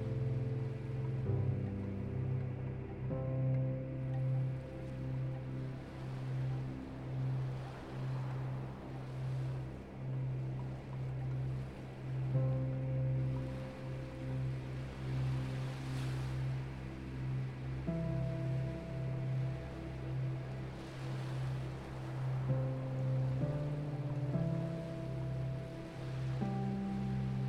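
Soft ocean waves roll in and wash back in slow, repeated swells, blended under steady, sustained musical tones. No one speaks; the surf stays gentle throughout.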